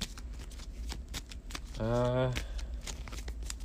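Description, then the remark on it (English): A deck of cards being shuffled during a card game, the remaining cards after the top three were looked at, a steady run of crisp papery riffles and clicks, with a brief voiced hum rising over it midway. “I'll shuffle the rest.”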